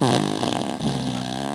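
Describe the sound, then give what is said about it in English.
A loud, buzzy fart sound from a fart machine blares for over a second, a single drawn-out raspy blast that wobbles in pitch before trailing off, with no talking over it. “So the music's back and the fart machine's back. Ooh, yep, one more.”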